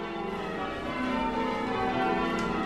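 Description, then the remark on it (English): The church bells of St. Michael the Archangel in Chagford, England, rung by the church bell ringers, ring in a steady, overlapping peal, their sustained metallic tones blending into a continuous wash of sound. Fairly loud and unbroken throughout, with no voices. “The Bells of St. Michael the Archangel: A Ringing Tradition Continues in England”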